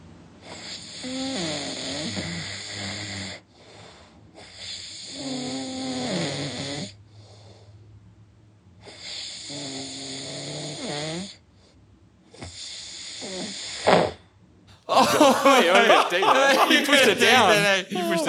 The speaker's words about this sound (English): I got a bit of audio from …. He's snoring the other night.